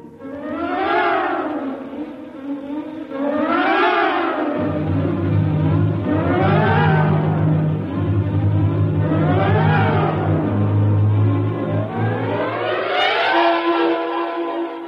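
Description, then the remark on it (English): An engine turns over and settles into a steady low drone, with loud wavering rising-and-falling whines repeating every few seconds above it. No one speaks. “Somehow the engine coughed and spit us back to the station.”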